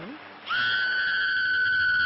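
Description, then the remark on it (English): A woman lets out a long, piercing scream in a creepy scene, starting suddenly after a brief quiet moment and holding one steady, shrill pitch at full volume until the end. “Old girl, can you scream?”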